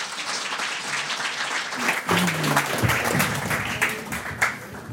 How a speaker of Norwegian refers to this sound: La oss gi dem begge en varm applaus og ønske dem opp på scenen.